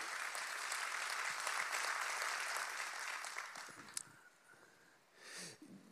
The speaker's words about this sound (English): We can clap for the team. They've done a great job.